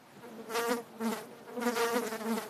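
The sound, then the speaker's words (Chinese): More and more mosquitoes whine and buzz as they fly about, in a series of rising and fading swells, as if circling past the ear several times, with no talking. “哎呀，越嚟越多蚊子仔嘅。”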